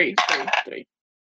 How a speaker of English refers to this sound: Okay, I'm rolling 2 of the dice. No, you roll 3 of the dice.